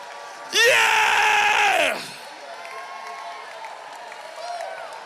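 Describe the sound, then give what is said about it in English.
A large church audience bursts into loud shouting and cheering for about a second and a half, then the roar drops away to a low murmur of scattered voices. “Come on, some of you are shouting your way out of bankruptcy right now.”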